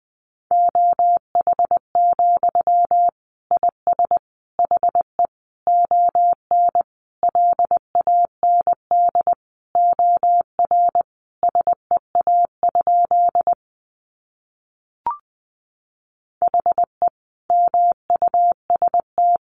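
Morse code sent at 20 words per minute: a single steady mid-pitched beep keyed in rapid dots and dashes, with a short pause and a click partway through, and no voices.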